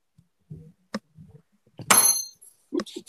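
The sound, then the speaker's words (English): A few soft knocks, then a tool drops onto a desk with a sharp, loud clatter and a short metallic ring, followed by a couple of lighter thuds. “Tool I was holding onto. Yeah, I dropped it on my desk.”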